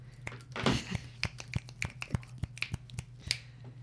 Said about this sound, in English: Yeah, I think today we applause by snapping our fingers.